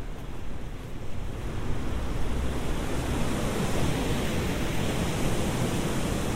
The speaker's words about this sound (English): There we go, I can hear the river again.